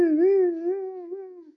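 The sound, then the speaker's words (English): A voice imitates the siren of an ambulance passing a city bus with a single sustained, wavering wail that holds a steady mid pitch, dipping and rising slightly, then fades out after about a second and a half. “All of a sudden, an ambulance passes the bus. The siren.”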